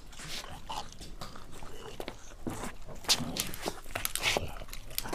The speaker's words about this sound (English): You lot, stop chewing and leave us. I can't think with how loud you're eating.